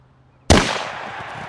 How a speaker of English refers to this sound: The sound of gunshot, the smell of gunfire, and the stampede of horses happened quickly, and their eyes were on lucky number 37.